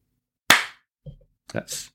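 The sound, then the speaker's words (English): A single sharp hand clap, made by clapping a sprig of fresh mint between the hands to garnish a drink in a glass, rings out and fades quickly, followed by a soft thud and then brief, brighter rustling and handling sounds. “That's actually me putting the sprig of mint into my hand and clapping on it.”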